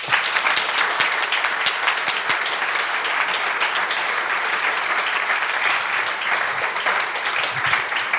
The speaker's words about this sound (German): Damit die Videoleute gleich einen Schnitt machen, möchte ich einmal erstmal kurz einen ganz lauten Applaus hören für Hans-Anand Pant.